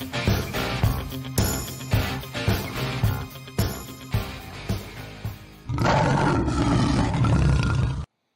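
A lion roars in repeated, rhythmic bursts, then gives one long, loud, rumbling roar that holds to the end, with no voices.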